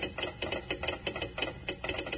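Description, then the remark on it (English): Kellogg's Rice Krispies crackling as milk is poured over them: a dense, fizzy stream of tiny snaps and pops that swells in quick, regular pulses, fairly quiet and with no voices. “Now, how about telling us why Kellogg's Rice Krispies sound off like that when you pour milk or cream over them?”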